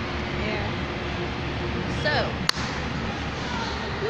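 A single loud, sharp hand clap cracks out midway, its echo trailing off briefly over a steady hiss of background noise, with faint chirpy sounds just before.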